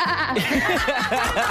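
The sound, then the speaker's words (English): A person imitates a sheep, letting out a string of quavering, wobbly bleats up close, loud and continuous for a second or two, with a laugh-like edge. “sheep noise.”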